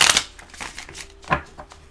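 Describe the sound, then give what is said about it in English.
A deck of cards being shuffled for the week ahead: a dense papery riffle burst at the start, then a few softer flicks and taps, with one sharper snap near the end. “I'm going to go ahead and shuffle for the week.”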